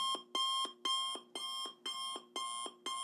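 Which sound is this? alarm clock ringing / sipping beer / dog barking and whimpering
alarm clock ringing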